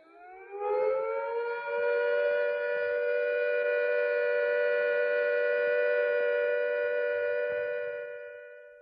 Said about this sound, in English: When the immediate danger of air attack or fallout has passed, the siren will sound a steady note like this.